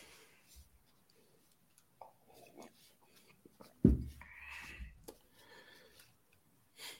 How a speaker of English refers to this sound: No, I'm wiping my hands off because all those trophies were dirty as shit, dude.